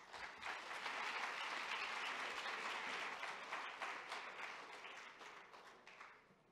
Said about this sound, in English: Actually, the applause should have continued until I made it to the stage.